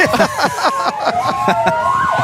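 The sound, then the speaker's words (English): A loud, steady siren from the Taylor Fire Department's fire truck wails with a slowly rising pitch while rapid, repeated bursts pulse over it. It sounds continuous for the whole stretch, with no talking. “That is the Taylor Fire Department.”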